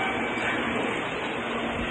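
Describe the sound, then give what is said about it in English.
A long train of 16 to 20 cars pulling away from a platform: a steady, loud wash of rumbling and hissing rail noise with a faint low hum, continuous throughout and without any voices. “and then the sound of the train as they pull away, and they get going so fast.”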